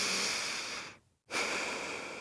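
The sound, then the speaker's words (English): Slow, deep breathing: a long airy exhale, a brief silent pause, then another full breath drawn in steadily. No talking. “Don't forget to breathe.”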